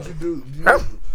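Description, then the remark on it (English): A person's voice imitates a dog, with a low, drawn-out growly vocal sound leading into a single sharp, loud bark. “Start barking at this icy phone.”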